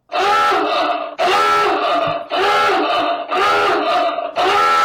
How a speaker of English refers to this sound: Thought it was supposed to be wailing and gnashing of teeth. The gnashing of teeth? Panic screams? Okay. That's close.